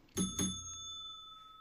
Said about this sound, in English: So ring the bell for him, DP.